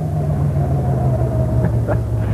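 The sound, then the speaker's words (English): A car engine rumbles steadily at low revs, idling at a red light, with a faint thin whine running above the drone and a couple of soft clicks near the end. No one speaks. “Oops, red light.”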